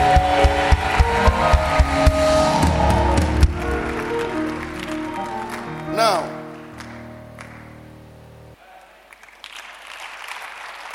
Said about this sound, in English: Come on, clap your hands and scream.